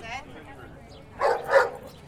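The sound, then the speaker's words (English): A dog gives two quick barks in close succession, moderately loud, after a brief faint voice at the start. “That's a good dog.”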